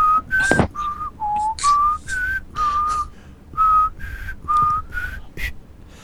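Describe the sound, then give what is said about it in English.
A phone ringtone goes off in an apartment, playing a looping melody of about a dozen short, whistle-like tonal notes with small pitch slides. It is moderately loud, has no talking over it, and pauses briefly between phrases. “I got an annoying phone going off in my apartment.”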